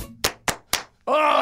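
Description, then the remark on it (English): Three loud, sharp hand claps land in a quick, even rhythm, each cracking out and fading fast, followed by a sustained, loud voiced groan that holds steady to the end. “Big clap.”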